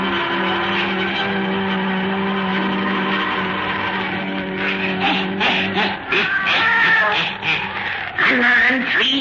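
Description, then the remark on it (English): A black cat named Satan meows and yowls in drawn-out, wavering cries that grow louder and more insistent toward the end, set against a low, steady droning tone. “weird, blood-chilling tales told by old Nancy, the witch of Salem, and Satan, her wise black cat.”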